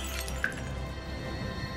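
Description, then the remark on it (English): A woman brings a bottle down onto a glass, striking it once with a sharp, brief smash and a short ringing clink, heard against a steady low background rumble with no talking. “She takes a swig from the bottle that you handed her, and then she takes the bottle and she brings it down onto that glass.”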